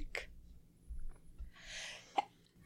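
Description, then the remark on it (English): A short sneeze, with a quick breathy intake followed by a sharp burst, faint, with no talking around it. “I forgot about that. Bless you.”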